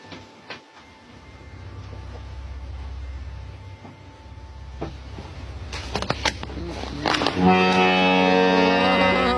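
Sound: boat horn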